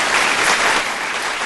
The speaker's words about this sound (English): This is a loud audience. We're getting clapping real loud.